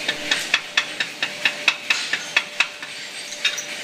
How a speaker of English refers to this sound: If you'll notice, he's hammering out a chain.